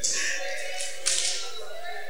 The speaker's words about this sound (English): Now, since you already mastered that, slap somebody a palm burning, face reddening high five, and tell that person you will break through.